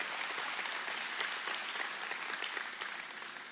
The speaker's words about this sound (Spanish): Vamos, fuerte ese aplauso.